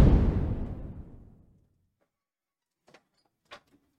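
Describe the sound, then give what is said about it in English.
A sliding closet door rolls shut with a loud rumbling whoosh that fades over about a second and a half, followed by silence and a couple of faint clicks. “All right, I'm over here talking with my closet door open.”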